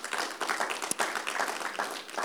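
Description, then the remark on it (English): An audience claps together in a steady, dense wash of applause that holds at a fairly even level for a couple of seconds, with no voices rising above it. “So we can clap that up.”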